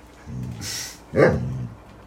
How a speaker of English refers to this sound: The dog agrees with me.